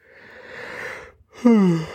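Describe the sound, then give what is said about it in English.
A long, breathy yawn: a drawn-out airy inhale, a brief pause, then a voiced groan that slides downward in pitch before trailing off. No one speaks. “Sorry for the yawn, guys.”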